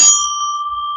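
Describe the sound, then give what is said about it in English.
A single loud, bright bicycle-style bell rings once with a sharp strike, its clear metallic tone sustaining and slowly fading over the second, with no talking. “No shit, it's a bell. That time was louder than I expected.”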